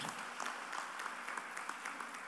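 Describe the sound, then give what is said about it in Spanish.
An audience at a church service claps steadily in applause to Jesus as a show of faith, a dense wash of many hands applauding together with brief sharper peaks, sustained throughout with no one speaking over it. “¿Por qué no le doy un aplauso a Jesús como muestra de fe?”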